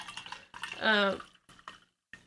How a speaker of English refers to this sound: Wine pouring ASMR. You're supposed to talk over the wine pouring.